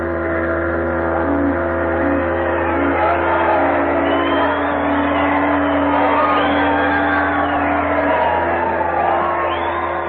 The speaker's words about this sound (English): There was shouting and rejoicing. There was singing and laughter.